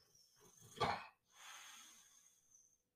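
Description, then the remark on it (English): A dog breathes heavily: a sharp, snorting huff followed by a longer, raspy exhale, with no one talking. “Your breathing is so hilarious.”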